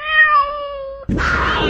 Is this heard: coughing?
no